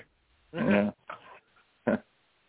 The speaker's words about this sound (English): do I hear a dog? Maybe.